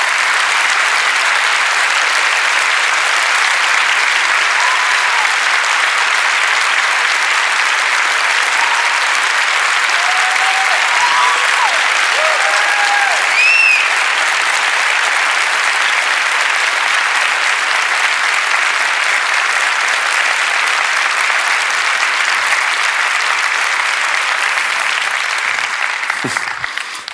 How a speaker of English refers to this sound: Only thing bad about asking you to stand is we all want to stand in applauding for you